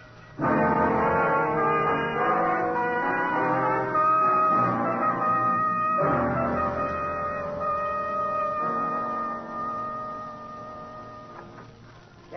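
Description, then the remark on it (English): An ambulance siren blares loudly and steadily, its rich, horn-like tone switching between pitches every couple of seconds, then fading slightly toward the end. No one speaks. “Ambulance, Danny.”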